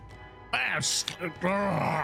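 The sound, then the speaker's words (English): A person voices a monster's guttural growl in two drawn-out, rasping bursts separated by a short hissing breath, loud. “He starts growling at you all.”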